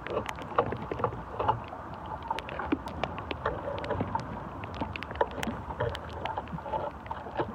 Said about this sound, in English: And the wood creaking. The leaves blowing in the wind.